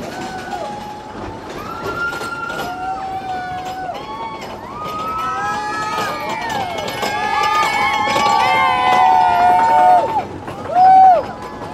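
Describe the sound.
A wooden mine train roller coaster rattles past, its clattering roar growing steadily louder, with shrill squealing tones and a crowd's voices mixed throughout.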